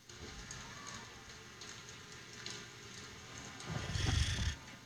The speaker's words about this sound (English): I created a triad of sounds into one. This is through a sleep pillow. Do you want to hear it? A proprietary blend, as it were? Yeah, yeah, it is a lightning storm. It is raindrops falling and wind.